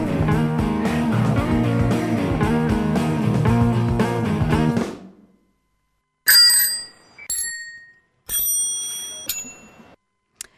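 A stretch of music fades out, then a bright bell rings several times in quick, uneven bursts, loud and close, with short silences between the rings.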